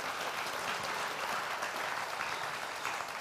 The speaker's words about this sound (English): Some churches have a culture of like, amen, preach it. That was that. That applause. That's our version of that.